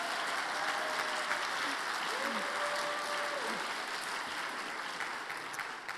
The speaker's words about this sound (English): Good morning, and welcome to the opening convocation of the academic year. My name, yeah, it's applause worthy.